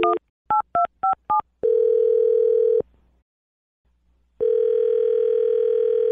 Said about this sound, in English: Okay. Here we go. I'm dialing his phone number right now.